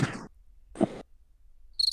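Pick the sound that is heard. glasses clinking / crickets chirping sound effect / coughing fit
crickets chirping sound effect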